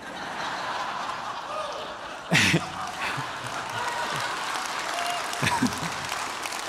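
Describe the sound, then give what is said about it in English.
A crowd applauds in a steady, dense wash of clapping that runs the whole length, with a couple of brief bursts of laughter and chuckling rising above it. “Some of you aren't clapping.”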